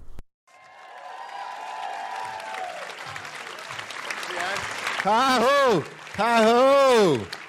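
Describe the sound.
A live audience at a live show claps and cheers steadily, a dense wash of applause, and then a loud voice lets out two long, drawn-out calls of "ha-ho" over the fading clapping.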